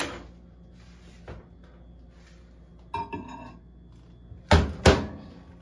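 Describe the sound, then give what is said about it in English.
A microwave door is opened and a half cup of water is set inside with a light clink, to be warmed for 30 seconds, followed by two loud, sharp thuds as the door is shut firmly. No one speaks. “I've got 1/2 cup of water, which I'm going to take and I'm going to put in my microwave for 30 seconds to warm it up.”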